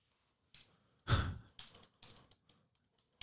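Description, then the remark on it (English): Quiet, irregular tapping on a phone as someone types to look up the police number, a handful of soft clicks spread over a few seconds, with one louder breathy rush near the start. No one speaks. “What are you typing exactly?”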